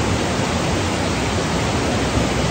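A steady, full-bodied rush of flowing river water at a spot mostly untouched by man, dense and unbroken from start to finish, fairly loud with no voices or other sounds over it.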